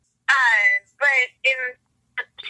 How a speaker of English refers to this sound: But I lost you there for a sec. Your phone's doing weird stuff. Oh, can you hear me?